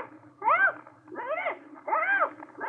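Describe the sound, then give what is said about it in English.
A parrot screeches three times in a row, each loud, shrill cry swooping up and back down in pitch, with brief pauses between and no one talking. “The parrot, all right. Yelling bloody murder.”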